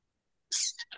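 A loud, forceful sniff, a sharp hissing inhale that breaks into two shorter follow-up snuffles, alone with no talking.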